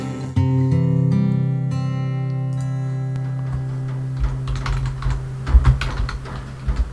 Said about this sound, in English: we can hear you typing. Everybody can hear you typing coming out of that break. That's all. That wasn't typing. Yeah, it was typing. Your keyboard is the loudest keyboard in the history of technology.